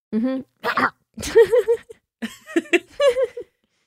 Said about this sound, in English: Was that a Hyrax? Yes, it was.